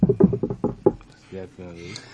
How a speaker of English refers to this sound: Knock on wood.